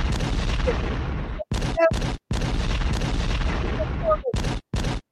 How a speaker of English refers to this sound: We need to drop the explosions. Pop, pop.